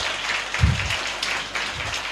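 A crowd applauds steadily, a dense wash of many hands clapping at moderate volume with no voices standing out, sustained through the whole short moment.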